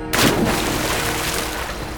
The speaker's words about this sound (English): Their gossiping was suddenly interrupted by a growl and a splash from the direction of the river.